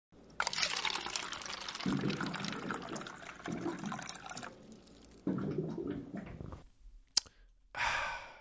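A water cooler gurgles and fills up, with rushing water and deep glugging bubbles in several loud surges, then a couple of short sputters at the end.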